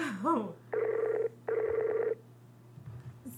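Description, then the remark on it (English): A Skype call ringing on the line: two short, buzzy ring bursts a moment apart, fairly loud, with a brief bit of voice just before and faint talk afterward. “So, anyway, I have a hard time with the ringing.”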